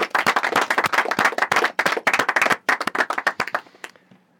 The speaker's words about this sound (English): And can we give him a round of applause? Thank you very much. Thank you.